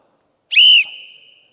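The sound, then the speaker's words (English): A single sharp, loud blast of a coach's whistle, shrill and piercing with a slight trill, cutting off after about a third of a second and leaving a faint ringing tail. “So like a good coach, he pulls out the whistle.”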